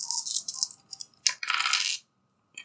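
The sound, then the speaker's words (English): Dice clatter and rattle in a few quick bursts as a player takes out dice for a tabletop role-playing game, one longer shake near the end, followed by a faint click after a short pause. No one speaks. “I forgot to get those super dice out.”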